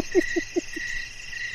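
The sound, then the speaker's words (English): A steady chorus of crickets chirping in a continuous high trill, with four soft, low, evenly spaced knocks in the first second. No one speaks. “There's so many crickets.”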